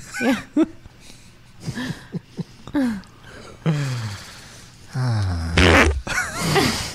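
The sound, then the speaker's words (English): A rapid series of varied farts, from short sputtering pops to longer drawn-out squeaky ones that rise and fall in pitch, loud with brief gaps between them. “That's how Colin feels about my farts.”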